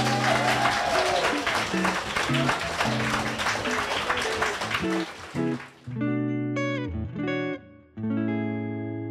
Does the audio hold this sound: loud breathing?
no